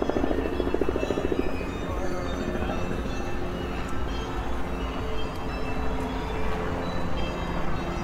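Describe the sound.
A steady, droning helicopter rotor noise runs unbroken for the whole stretch, loud with a deep rumbling throb. Brief muffled voices are audible near the start.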